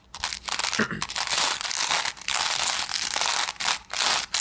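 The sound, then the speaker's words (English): Crinkling of plastic packaging used as a sound effect, a dense rustling that runs nearly nonstop for several seconds with a few brief pauses, fairly loud and with no voices. “That's a very dragon draconic. Crinkle.”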